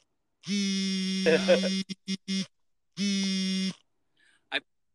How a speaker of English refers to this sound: For everybody wondering what those alarms were that just went off on our phones, we got an emergency alert. I'm assuming that's what you just got, sure.